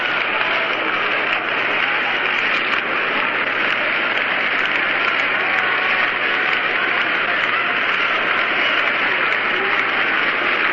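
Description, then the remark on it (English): A stadium crowd at Yankee Stadium keeps up staccato clapping during a baseball game, a dense, steady wash of rapid claps and crowd roar that holds an even loudness for the whole stretch, with no clear voice rising above it. “Now they're starting the staccato clapping that you can hear in your radio here at Yankee Stadium.”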